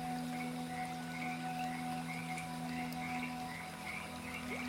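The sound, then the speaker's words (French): A dense chorus of frogs croaking by a lake at night in steady, overlapping pulses, with a continuous low hum of night ambience underneath and no voices. “Peut-être que des oiseaux, des criquets ou des grenouilles se trouvent actuellement derrière le rivage.”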